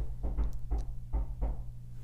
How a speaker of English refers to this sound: Somebody's knocking on the door. I should probably go get that.